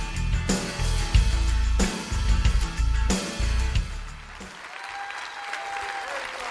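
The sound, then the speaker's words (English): The audience of Christian Life church in Austin bursts into loud, sustained applause for Jesus, with dense, crackling claps and heavy low rumble, swelling in waves before easing into a softer patter as a steady tone rises underneath. “Come on, let's clap all for Jesus here tonight.”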